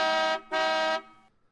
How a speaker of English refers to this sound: And then honk in their face, you know.